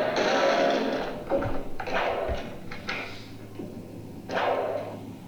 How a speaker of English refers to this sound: That was a whip snapping.